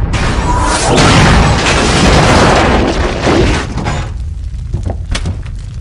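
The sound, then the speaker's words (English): A huge cinematic explosion roars with a deep, sustained boom and rumble for several seconds, then gives way to scattered debris crackles and tinkling fragments as it fades. “Explosions are awesome, but they just don't seem to have as big a threat in movies.”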